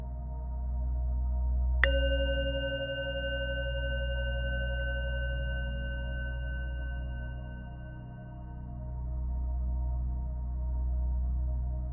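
A single bell is struck once, its clear, bright tone ringing out and slowly fading over several seconds above a steady low background hum.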